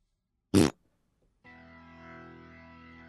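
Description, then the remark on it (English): A sharp, loud burst is followed by a sustained, buzzy, distorted fart noise sound effect that drones on steadily until the end, with no one talking. “Just make like a fart noise.”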